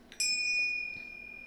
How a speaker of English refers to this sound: Here's your bell.